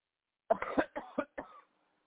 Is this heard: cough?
yes